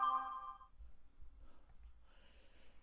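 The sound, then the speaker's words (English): A phone ringtone sounds briefly at the start, a bright electronic tone that cuts off after under a second, leaving low rumble and faint scattered noise with no talking. “I forgot to silence my phone.”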